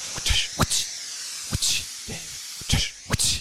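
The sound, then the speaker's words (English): Short bursts of hissing steam in a steam room come in quick, uneven spurts, each with a soft thump at the start, fairly loud, and no voices. “It's a steam room, baby.”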